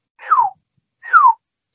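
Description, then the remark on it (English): Two clear, downward-sliding whistles, each under half a second and separated by a short pause, imitating avian-sounding vocalizations heard at about 1:30 in the morning. The whistles are moderately loud, with no talking. “And they were very, I have to admit, they were very avian sounding, this whistling sound, this.”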